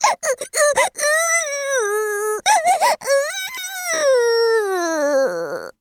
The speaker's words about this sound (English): Bam! The bed broke. Fireball crashed to the ground, and Sparky was so terrified he began to wail.